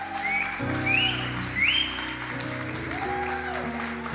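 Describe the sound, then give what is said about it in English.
An audience at Toronto City Church applauds steadily for about four seconds to welcome a guest pastor, with a few high whoops rising above the clapping and sustained organ-like chords playing underneath. “Come on, let's clap for her.”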